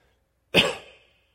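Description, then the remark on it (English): A single sharp crying cough bursts out abruptly and trails off quickly, with a slightly strained, throaty edge. No one speaks. “That was a crying cough, in case y'all was wondering.”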